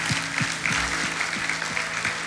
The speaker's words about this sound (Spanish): Vamos a darle al Señor un aplauso.